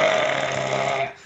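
A single long, loud burp rumbles for about a second with a steady, throaty drone, then cuts off abruptly, with no talking.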